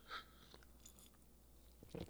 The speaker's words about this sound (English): Let me take a real quick sip. This Asahi from Japan.